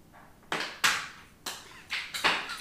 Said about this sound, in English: My cat has now knocked over the lid of a pot. She's very energetic right now. She is a little troublemaker.